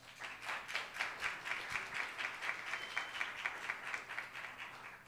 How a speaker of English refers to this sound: Can we give him a clap offering?